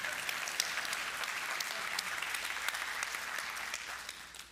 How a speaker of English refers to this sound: That was a good place to clap. Why don't we clap on that? That was good.